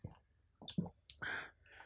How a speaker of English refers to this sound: What? Why are you panting? Bro, man, why are you tired from drinking water?